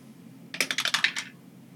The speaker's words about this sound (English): Again, I got to stop rolling that dice because I can't read it. But it's a 12, so it didn't matter that I missed it.